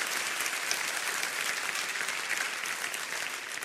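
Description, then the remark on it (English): An audience claps steadily for Jesus, a dense wash of many hands with no distinct beats, holding at an even, fairly loud level for the whole stretch without any voices. “Why don't you just give Jesus the hand clap he deserves right now?”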